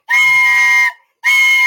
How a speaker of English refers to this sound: There's the victory whistle.